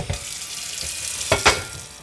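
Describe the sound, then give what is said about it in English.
A steady hiss of tap water running into a large pot in a Philadelphia row house kitchen, filled as if getting ready to cook pasta, with a couple of brief clanks partway through and no voices. “Okay, well, I'm grabbing a large pot here. I'm just going to fill it up with some water as if I was getting ready to cook some pasta.”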